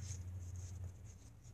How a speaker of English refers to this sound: Just gonna take a piece of paper, fold it up